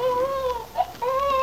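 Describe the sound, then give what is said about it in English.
An infant wails in a courtroom in sustained, high-pitched cries with a brief catch in the middle, fairly loud, with no talking over it. “Are you planning to call the infant itself as your next witness?”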